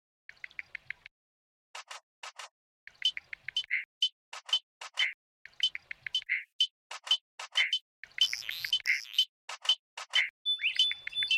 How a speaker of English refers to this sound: And now, to play us out, here's Ben's track featuring the chorus of Kasuko National Park, including the unmistakable sound of the exquisite spike thumb frog. Probably.